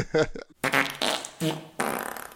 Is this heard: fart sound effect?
yes